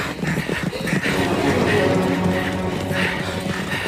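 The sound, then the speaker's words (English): Several riders' horses gallop straight through a likely ambush spot to get out of musket range, their rapid hoofbeats drumming in a steady, driving rhythm over a dense rush of noise, with indistinct voices mixed into the commotion. “When we gallop, gallop. Now, gallop! Gallop! Gallop!”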